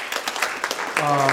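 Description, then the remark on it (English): An audience applauds the planting of 45 new churches across the Mid-Atlantic, dense, steady clapping that fills the whole moment, and a single voice calls out over the applause toward the end. “What's that, something to applaud?”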